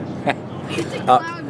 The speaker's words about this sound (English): All right, I am in the car with my beautiful triathlete wife, right?